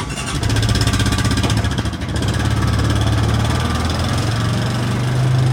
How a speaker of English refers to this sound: I have got into a small trailer and you've just jumped on a traditional farm quad bike